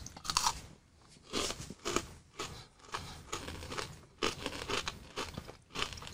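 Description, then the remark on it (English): Crunching of a crisp, square, layered peanut butter cookie snack, a Chico stick, with repeated sharp, brittle bites and chewing in an uneven rhythm over about six seconds, nobody speaking. “Yeah, it's good. Crunchy. I like it.”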